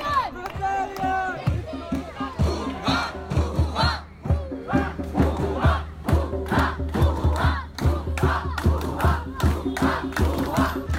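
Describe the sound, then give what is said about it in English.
A protest crowd in New Delhi, about to march towards the Ministry of Climate Change, Forest and Environment, chants and shouts in unison, loud rhythmic bursts of many voices repeating steadily, with a few higher cries at the start before the chant settles into a regular beat. “Hi all, this protest is happening in New Delhi and soon we'll start marching towards Ministry of Climate Change, Forest and Environment.”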